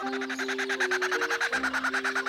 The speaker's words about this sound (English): This is a kookaburra.